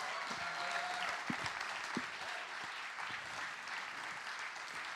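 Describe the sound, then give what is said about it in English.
An audience applauds steadily, a dense wash of many hands clapping at an even level, with a few sharper individual claps standing out and no voices heard. “Give them a big clap.”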